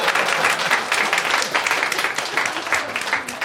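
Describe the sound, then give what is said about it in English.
A crowd breaks into steady applause as a vote to join the Teletubbyites, many hands clapping together in a dense, bright patter that stays loud and even for a few seconds, with a faint murmur of voices underneath. “And if you wish to join the Teletubbyites, please applaud now.”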